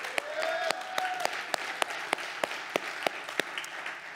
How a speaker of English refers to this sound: By the way, yes, let's just take, can somebody give Jesus a praise clap?